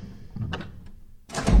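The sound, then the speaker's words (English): An office door opens with a short creak and a soft low thunk, then a louder, rougher scrape or bump as it swings, with no voices. “I had just fixed myself a glass of something brown when the door to my office opened, and I looked up nervously.”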